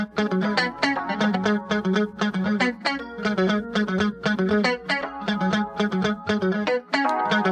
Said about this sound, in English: You hear a little keyboard in there, it sounds like. Mm-hmm. Keytar. I think that's what we decided it was.